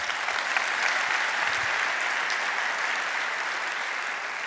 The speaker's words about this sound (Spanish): Dale un aplauso a Cristo.